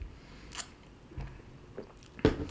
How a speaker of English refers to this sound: Yep, I'm taking one more sip.